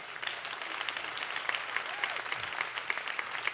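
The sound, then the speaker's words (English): An audience applauds steadily, a dense wash of many hands clapping at a fairly even level for several seconds, with a few sharper individual claps standing out. “I'm going to make everybody clap for that.”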